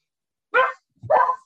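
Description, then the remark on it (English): Two sharp barks from a dog named Bacon in quick succession, fairly loud, with a short pause between them and no other sounds around. “Bacon just gave the Marner bark.”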